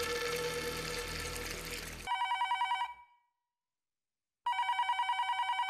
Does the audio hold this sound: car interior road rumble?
no